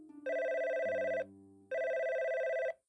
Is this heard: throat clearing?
no